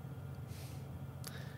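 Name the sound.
sneeze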